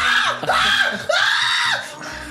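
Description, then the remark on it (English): A voice imitates a drawn-out scream of pain, loud, wavering in pitch through a couple of strained bursts with brief catches of breath between them. “I just pictured you on the toilet doing that in pain.”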